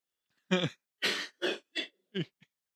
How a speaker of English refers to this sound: To everyone who can't hear, can't see. I've been coughing into a hanky.